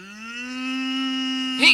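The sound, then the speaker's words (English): A cow lets out a single long, steady moo, fairly loud, ending with a brief breathy rasp as it trails off. “These people are everywhere and their cows are eating all my grass.”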